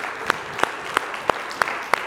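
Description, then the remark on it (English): An audience claps together in praise of God, six sharp, evenly spaced claps keeping a steady beat over a soft murmur, with no talking. “Come on, let's give him another hand clap of praise together.”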